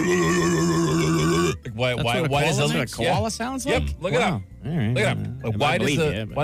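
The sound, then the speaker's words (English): A person imitates a koala's call: a loud, steady nasal drone, then a string of rough, warbling grunts and bellowing snorts that rise and fall in pitch. “They make the worst noise.”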